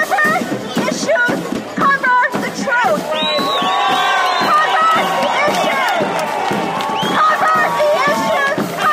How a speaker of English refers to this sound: The small but boisterous crowd was largely made up of young 20-somethings.